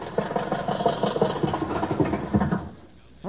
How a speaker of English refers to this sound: Funny thing how the body keeps rattling after the motor's turned off, ain't it? Yes, there's no such thing as a car having convulsions, is there?